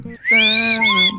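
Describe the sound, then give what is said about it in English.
Loud whistling of the Andy Griffith Show theme tune by several people: two sustained notes held for about a second, with a brief lower note before them and no talking. “I can't whistle.”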